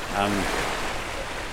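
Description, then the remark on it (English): A steady, loud rush of water fills the whole moment as the Severn Bore tidal bore surges up the River Severn in Britain, carrying debris back upriver, with a brief voice sounding near the start over the roar. “Encountering the surging Severn Bore on an atmospheric walk”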